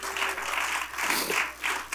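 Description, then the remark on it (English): A church audience claps their hands together for the Lord during a sermon, a dense wash of many people applauding at once, steady and fairly loud for the full couple of seconds with no voices over it. “Let's give the Lord a hand clap.”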